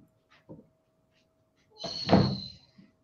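A door is opened by dogs, swinging open with a brief high-pitched hinge squeal and a low wooden thump, preceded by a couple of faint knocks in an otherwise quiet room.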